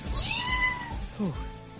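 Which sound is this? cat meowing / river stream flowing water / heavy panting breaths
cat meowing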